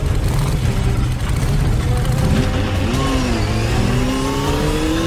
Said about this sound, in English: What on earth are you doing? You didn't tell me you had a motorbike.